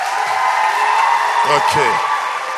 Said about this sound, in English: Those upstairs, you don't seem happy. Why? Are you happy? Okay, then let me hear you clapping upstairs.